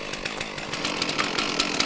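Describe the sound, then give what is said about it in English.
A chainsaw roars steadily, its harsh buzzing motor grinding through dry, dead brush in thick forest, used by a Cal Fire crew of young men at the top of a steep climb, with slight surges in pitch and a few crackling bursts, no voices present. “At the top of a steep climb, the young men pull out their shovels, rakes, and chainsaws.”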